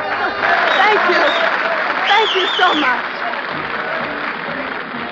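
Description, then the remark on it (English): A vaudeville theater audience applauds Annie Oakley's rifle act, steadily and loudly for several seconds, a dense wash of clapping with scattered cheers and a bright whistle rising above it midway. “Audiences everywhere applauded the quiet yet self-assured young lady who displayed such amazing ability with a rifle.”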